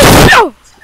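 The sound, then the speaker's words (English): A single loud sneeze: a sharp, noisy burst of breath that ends in a short voiced tail sliding down in pitch, then quiet. “Bless you.”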